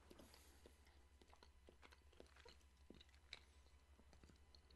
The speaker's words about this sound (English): I'm going to be munching on some of this cheese pretty much the whole episode, but I want to take a bite here. It's a lovely goat cheese, nice texture.